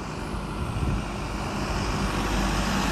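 street traffic

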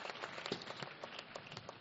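audience clapping

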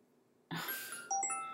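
phone ringing

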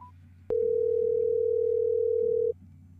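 telephone dial tone

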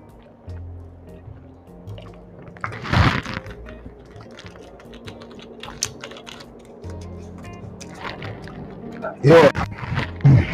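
drinking sparkling water

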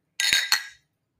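drinks clinking together

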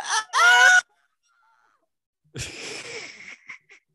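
scream

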